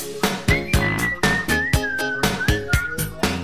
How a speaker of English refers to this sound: And she does this like silly, squeaky vocalizing that I thought was like weird but enjoyable. There's some whistling and...